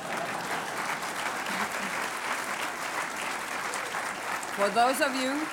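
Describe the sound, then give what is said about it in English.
An audience applauds steadily for Dr. Novello, the first female Surgeon General of the United States, a dense, even patter of many clapping hands that holds at a constant loudness for several seconds, with a voice rising over it just before the end. “I know that you're tired, but you're looking at the first female Surgeon General of this United States, and I think that needs a round of applause.”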